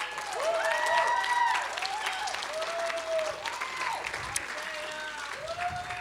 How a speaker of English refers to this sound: Can we just give these wonderful kids another hand clap?